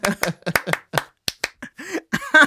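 Roughly a dozen sharp, crisp hand claps in a quick, uneven rhythm, fairly loud. A brief voiced, sung-sounding tone joins the claps near the end.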